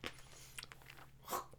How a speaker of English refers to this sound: Oh, I got brain freeze. I gotta chew this a bit.